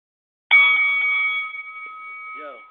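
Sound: bell ringing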